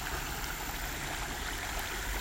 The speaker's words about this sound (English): And we'll just rest right here by this lovely, lovely creek.